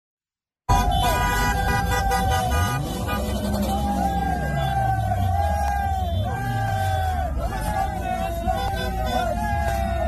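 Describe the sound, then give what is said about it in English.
A loud, dense street scene in Canada: young men cheer, whoop and yell while waving flags, with sustained car horns honking over the clamor in support of the Hamas-led attack on Israel, continuous from start to finish after a brief silent opening. “Up in Canada, our friends over at Rebel News caught video of young men cheering, waving flags, and honking in support of the Hamas-led terrorism attack on Israel.”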